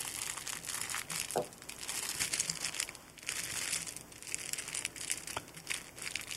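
The plastic packaging of stretchy arm sleeves crinkles and crackles steadily for several seconds as it is opened, a dense, bright rustling with a few sharper crunches, at a moderate level and with no talking over it.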